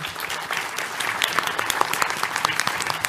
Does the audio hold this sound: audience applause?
yes